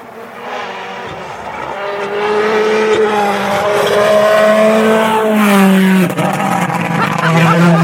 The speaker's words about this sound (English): Another car coming.